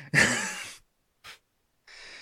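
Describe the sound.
A sharp, loud gasping intake of breath, then a short quick breath and a longer breathy exhale, unaccompanied, from a person sitting up in bed on waking, panting with sweat.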